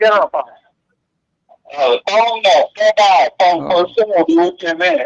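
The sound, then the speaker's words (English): Tinny, phone-filtered voices echo back as a live stream's audio loops through a caller's phone line from Florida: a short burst, a pause, then a steady stretch of muffled, radio-like talk. “You're going to need to turn down the audio on your video that you're watching.”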